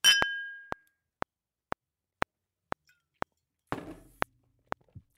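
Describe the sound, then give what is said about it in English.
Glasses clink together in a whiskey toast with a bright ringing chime, followed by a steady run of sharp, evenly spaced taps and another resonant clink partway through, with no voices. “I got to keep drinking whiskey to you, man. Dude, I drink to that. Cheers. Cheers.”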